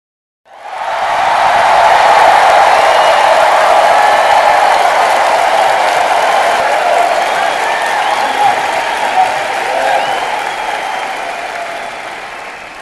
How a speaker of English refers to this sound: And before just introducing him, as usual, let's give him the great applause.